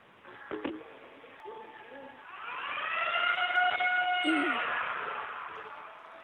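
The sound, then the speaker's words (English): A gym lunk alarm siren wails for a few seconds, its rising and falling tones swelling to a peak before fading, with faint background noise and no talking, sounded briefly at the gym front desk to tell a man to leave. “maybe do the lunk alarm to let him know that he needs to leave”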